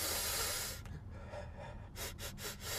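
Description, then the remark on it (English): Someone sniffs a person to find out what he smells like: a long breathy draw, a pause, then a quick run of about four short, sharp sniffs. No one speaks. “Why don't you give him a sniff and find out?”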